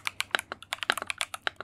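Rapid typing on a computer keyboard, a quick run of crisp clicky keystrokes in an uneven rhythm, with no voices.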